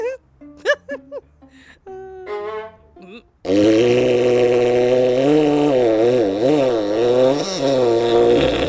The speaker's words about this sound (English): Okay, that was a foghorn fart. That sounded more like an actual horn than a human fart.